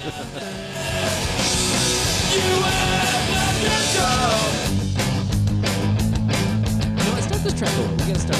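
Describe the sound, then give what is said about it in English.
A loud punk rock song blasts steadily, with dense distorted guitars, hard-hitting driving drums and shouted vocals. The drum hits grow sharper and more pronounced in the second half. “This is not background music, man. This is so good.”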